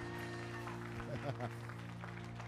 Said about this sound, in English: But with everybody closing, you still came out. Can you give yourselves a round of applause? Nudge the person and tell them, yeah!